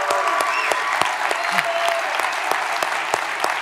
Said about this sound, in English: That deserves a clap.